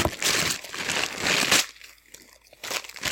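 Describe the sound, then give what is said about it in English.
Wrapping paper is crumpled and torn, a loud continuous crinkling for about a second and a half, then quieter scattered rustles and crackles trailing off. “Sound of wrapping paper.”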